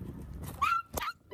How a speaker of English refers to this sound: Is that your dog?